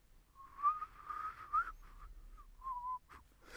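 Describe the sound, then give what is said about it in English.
A breathy, wavering attempt at a whistle, with airy hiss around a thin tone near one pitch that warbles and breaks off in several uneven bursts before trailing into a rush of breath. “It sounds like a sort of plastic bag being blown about in a breeze.”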